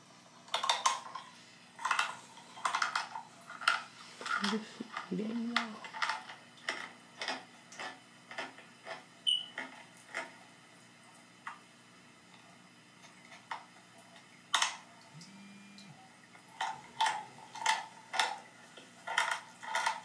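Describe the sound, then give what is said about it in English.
Someone crunching on dry chow: a steady run of sharp, crackly chewing bites in uneven bursts, with a couple of brief low hums in between and no talking. “That's her eating chow.”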